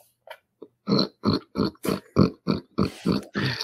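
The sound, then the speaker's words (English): A person imitates a pig with a run of about nine rhythmic grunting snorts, loud and nasal, each short burst following quickly after the last with no talking. “Hey, it's my little pig friend. Oh, make the noise it makes”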